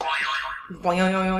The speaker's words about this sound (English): Here I have a random Trivial Pursuit card, and you guys have your morning zoo radio zoo buzzers ready.